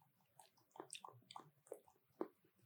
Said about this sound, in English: But these are warm-ups. Lip warm-ups. I'm a singer.